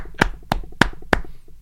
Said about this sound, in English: Can I give him a clap? You just did.